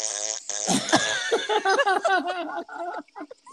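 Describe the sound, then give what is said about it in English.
A voice imitates a long, straining fart, as if trying to squeeze one out: a buzzy sputter of blubbering bursts that runs for a few seconds, then trails off into short, weaker pops. “Meanwhile, you're like going to the bathroom, flushing the toilet, trying to squeeze a fart out.”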